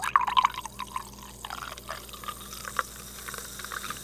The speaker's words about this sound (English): Oh, I'm going to pour a little bit more. Oh, wait. We're going to make this into an ASMR episode.